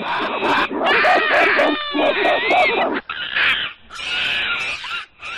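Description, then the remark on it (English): Monkeys in zoo cages screech loudly and almost nonstop as people approach, several shrill, overlapping high-pitched cries rising and falling, with only a few brief breaks in the din. “When we approached the monkey cages, their reaction was far from reserved.”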